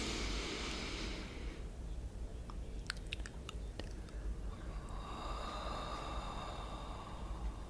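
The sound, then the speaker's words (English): A long breath drawn in through the nose, a steady rushing hiss that shifts in tone partway through, with a few small clicks in the middle and no talking. “Breathe in through the nose.”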